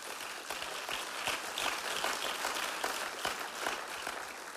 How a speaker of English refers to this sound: Come on, you can clap right now and thank Jesus.